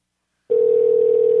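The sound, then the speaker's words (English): After a short silence, a steady telephone tone starts abruptly and holds loud and unbroken, a single continuous pitch like a call ringing out with no one picking up. “These people are seriously not answering.”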